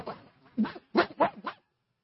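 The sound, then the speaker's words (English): A person imitates a dog barking, giving a low growly start followed by four short, punchy barks in quick succession, with no other sounds around. “he got on the phone with his commanding officer and started and said, bark, bark, bark, and started growling and barking at him like a dog.”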